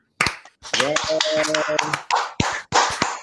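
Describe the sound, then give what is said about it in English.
One person claps hands a handful of times, sharp, with an irregular rhythm while a voice talks or laughs over part of it. “I have to give you a clap because you pronounced my last name perfect.”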